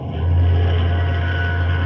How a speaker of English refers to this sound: Sounds like an ocean liner, right enough. Yes, we're signaling her. Good Scott. There she is, the Gigantic looming out of the fog. Looks like a mountain coming at us.